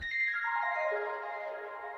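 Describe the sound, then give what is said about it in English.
Bright, bell-like tones produced by adding reverb and delay effects to a dry sound ring out and blur together in a wash of echoing repeats, a stepped cascade of shimmering pitches descending slightly and sustaining like a cluster of wind chimes, with no voices. “Just add reverb and delay. It sounds like a load of chimes.”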